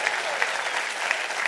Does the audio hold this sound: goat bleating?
no